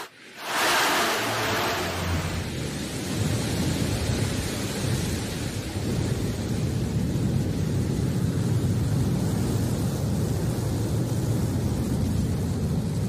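The engine of the New Shepard rocket ignites at Launch Site 1 in the West Texas desert with a sudden burst, then settles into a loud, continuous, deep rumbling roar that holds steady, crackling throughout, with no voices.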